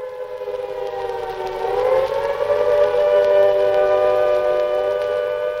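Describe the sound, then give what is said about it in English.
An air raid siren wails steadily in Britain within 8 minutes of Chamberlain's declaration, a false alarm; its harmonic tone swells and rises in pitch after the first couple of seconds, then holds loud and sustained with no voices. “Within 8 minutes of Chamberlain's declaration, the air raid sirens began to wail, and it seemed that the worst had happened.”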